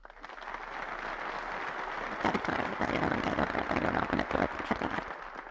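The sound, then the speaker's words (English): An audience claps steadily, a dense wash of many hands that swells slightly after a couple of seconds and holds at a moderate level with a few sharper claps standing out. “Before you clap, let me point out that the reason why we have too much printing spending and too much printing of money is because you people want it.”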